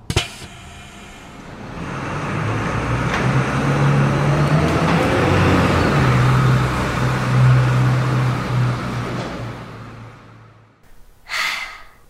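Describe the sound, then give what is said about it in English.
A bus engine rumbles and revs with shifting low pitch as the bus drives away, swelling to a steady roar before fading out; a short breathy gasp follows at the very end. “Please exit the bus.”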